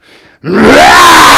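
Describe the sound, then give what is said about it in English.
A person imitates the roar of the lion from The Wizard of Oz with one long, loud, rasping growl. It starts abruptly after a brief quiet hiss and holds at full strength, rising slightly in pitch as it goes. “He was the king of the jungle, and finally, when the animal says, "Can you roar?"”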